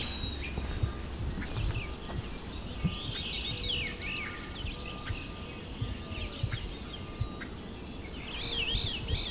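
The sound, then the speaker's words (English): Great crested flycatcher calls, a few rising, whistled wheep notes in short bursts, over a steady outdoor background hiss with other faint birdsong. “Or that viru call. It's theirs as well. Great crested.”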